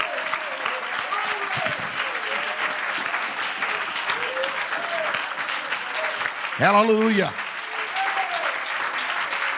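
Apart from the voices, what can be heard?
audience applause and clapping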